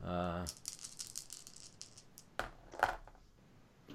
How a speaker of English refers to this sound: Yeah, oh, you're just hearing all these arrows raining down.